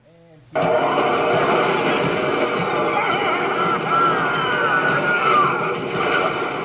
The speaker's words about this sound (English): I was there driving in. Here I am parking my car at that hotel.